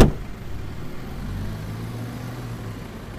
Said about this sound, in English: It's not a far walk from home, but it's late, so she decides to hitch a ride. Car after car passes her by as she tries to flag them down.